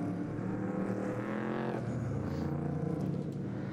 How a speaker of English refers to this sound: Acura NSX safety car through the carousel one more time as they continue to work with Tim Mosier's Ligier that's stranded down in the keyhole.